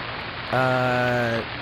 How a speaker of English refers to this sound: In regards to the weather, does this rain make you feel... repentant?